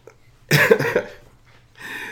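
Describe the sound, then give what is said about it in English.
A person with a persistent cough, on its ninth day, coughs: a harsh, loud burst of coughing, then a brief pause and a second rougher cough starting near the end, with no talking. “I am in day 9 of having a persistent cough, so I'm going to try and get through this without day coughing.”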